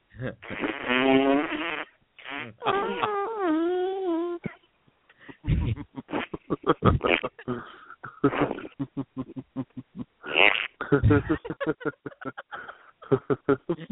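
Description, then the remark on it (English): Loud wet fart sounds: two long wobbly, sputtering blasts, then a stretch of rapid, choppy bursts that flutter on and off until the end. “I could listen to your fart sounds all night.”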